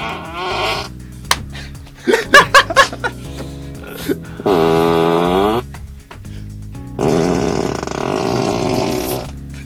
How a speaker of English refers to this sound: As crazy it sounds, you can fart on demand or fart when you use the turn signals. If you're not happy with your fart noise, don't worry, you have multiple options.